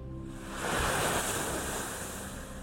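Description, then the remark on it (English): Waves lap onto a sandy beach on a 6-degree morning as the sun rises, one wash swelling to a broad hiss and slowly receding, with light wind noise across the microphone and no voices. “It's 6 degrees, but the sun is rising, the water is lapping beautifully as it crashes the sand, and it's just a beautiful morning to go in.”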